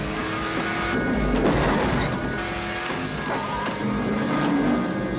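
Race cars roar with a steady, droning engine whine while a heavy crunching impact of one car slamming into another bursts out early, followed by continued loud rumbling and scraping.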